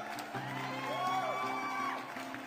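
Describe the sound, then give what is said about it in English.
A crowd cheers and whoops steadily for a couple of seconds for a young man introduced as a role-playing game Game Master, with high rising shouts over a dense wash of clapping and voices, holding at an even, lively level throughout. “A round of applause for this young man here.”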